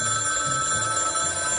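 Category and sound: signal or alarm, telephone ringing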